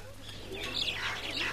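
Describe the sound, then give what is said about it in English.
Birds chirp and twitter in a busy overlapping chorus at dusk as they return to their nests, a steady wash of high tweets over a low background hum. “It seems the birds are also out on a long drive.”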